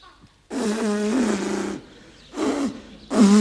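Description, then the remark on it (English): A motorbike engine with a blocked feed pipe sputters and fails to catch: one long, rough, throaty burst followed by two shorter coughing splutters, loud and alone with no voices. “I can't help my bike breaking down.”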